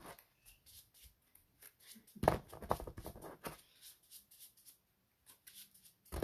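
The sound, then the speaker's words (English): Playing cards in Dragon Shield sleeves being shuffled, a run of quick, dry scraping and flicking bursts with short pauses between, a louder rustling stretch in the middle, fairly quiet overall. “And it's a very distinct scraping noise.”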